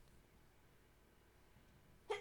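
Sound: sneeze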